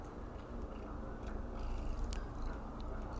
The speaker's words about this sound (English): Oh, she's purring. I hope you can hear that. Oh, we love this.